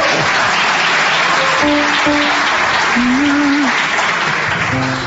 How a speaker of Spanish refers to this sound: Creo que es la primera vez que los aplauden cuando hacen esto.